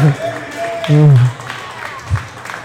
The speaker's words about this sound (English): Can you please show yourself some love for West Genesee football? Go ahead and clap it up. Clap it up.